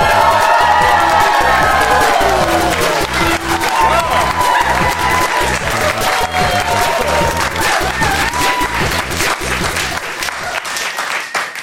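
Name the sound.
audience applause and cheering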